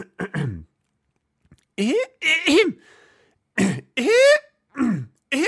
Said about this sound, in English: Was that it? No. That was just me clearing my throat.